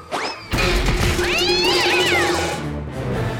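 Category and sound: animal, cat meowing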